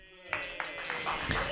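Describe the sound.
An audience bursts into applause for a performer finishing his set after a brief quiet moment, the clapping swelling into a dense, steady wash with a few sharper claps and crowd voices mixed in.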